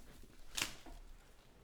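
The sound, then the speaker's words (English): A deck of playing cards is thrown onto the floor in one quick papery burst, a soft slap with a brief flutter as they scatter, followed by faint rustling and quiet background noise. “I just threw them on the fucking floor. You made a mess. That's right. Oh, my goodness. There's cards everywhere.”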